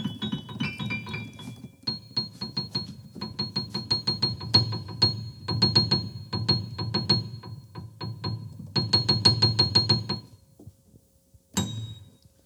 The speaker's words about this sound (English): Here's the theme song for the sports segment of the Bell the Before podcast.